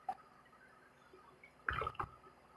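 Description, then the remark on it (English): A swig of water: after a quiet pause, a short burst of sloshing liquid and a gulp, followed by a second brief swallow. “So let me take another swig, all right?”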